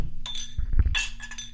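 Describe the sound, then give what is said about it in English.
Several glasses of tequila clink together in a quick toast, bright ringing tings overlapping over a second or so, with a few dull knocks in between and no voices. “All right, cheers up, boys. All right, bros. Cheers.”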